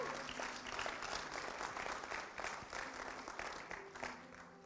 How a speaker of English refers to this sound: Yes, thank you. Yeah, we should be clapping.